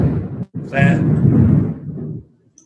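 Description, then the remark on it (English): A loud, deep rumble of thunder rolls through for about two seconds before fading out, with a voice faintly heard over it. “That's not me. That is thunder.”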